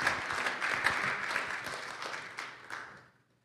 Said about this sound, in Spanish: ¿Quiere darle un fuerte aplauso a nuestro Señor? Póngase de pie.